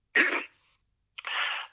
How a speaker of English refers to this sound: Just finally, we know that people, I even had it myself, you probably heard me coughing about with a sore throat.